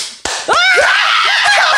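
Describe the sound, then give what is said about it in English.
A few sharp, loud hand slaps crack out in quick succession, over a dense noisy background with high-pitched squealing voices. “I'm slapping my hands.”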